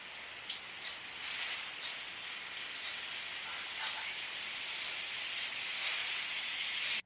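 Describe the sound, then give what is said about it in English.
An air conditioner runs with a steady, airy hiss, slightly rough and textured, holding an even level throughout with no voices. “You know, actually, I think that there was an air conditioner that was running, so I think that that was the little sound of that.”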